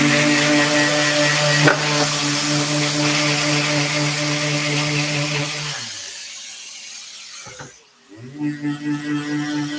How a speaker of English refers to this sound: So one thing we want to be super intentional of, and you can see the two dots down in the corner there, we got to make sure we get those off. So we'll sand a little more.